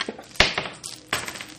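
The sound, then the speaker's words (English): Dice rolled for an attack roll in a game clatter across a hard tabletop: two sharp knocks with lighter rattling ticks between and after them, quick and uneven, with no voices. “Okay, that was the fourth time I got a 6. I'm not going to use that dice.”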